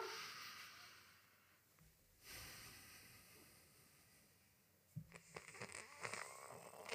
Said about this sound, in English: Have you tried breathing through your nose? I can't do it. Listen, I'm going to breathe through my nose.